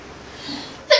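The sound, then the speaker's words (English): A single sharp, loud sneeze bursts out near the end after a quiet stretch of faint room noise. “Bless you.”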